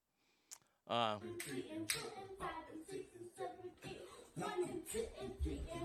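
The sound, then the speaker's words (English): Sharp, rhythmic hand claps keep a steady beat for several seconds while a voice shouts and chants along over them after one short opening clap, as a father who is a professional wrestler practices a cheer at home. “He's practicing a cheer.”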